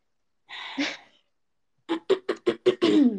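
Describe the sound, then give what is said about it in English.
A rough, noisy throat clearing, then a pause and a quick run of about six short, voiced bursts, moderately loud with no talking. “Not the clearing of the throat.”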